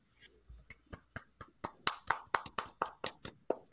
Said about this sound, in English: Muhammad, play the clapping noise. Oh, I'm so late on this. There you go.